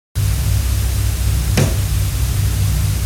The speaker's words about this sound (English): The next one is a knock. It's incredibly loud. It's on all three.